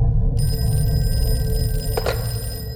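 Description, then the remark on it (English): A telephone rings just after midnight, its bright electronic tone holding steady over a low rumbling background hum, with a brief burst of sound near the end before the ring fades. “Just after midnight, he was woken up by a phone call.”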